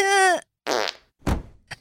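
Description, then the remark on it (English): A run of four loud farts in a basement: a long squeaky, tonal one first, then two rougher sputtering blasts and a quick final puff, with short silences between and no talking. “How did you not learn to, like, hold your farts in a basement?”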